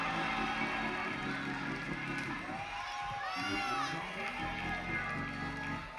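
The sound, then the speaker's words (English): A church audience screams and shouts loudly and continuously, a dense roar of many voices with a higher, rising cry swelling through the middle before the crowd noise carries on. “Somebody scream, how long?”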